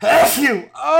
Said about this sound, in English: Gesundheit.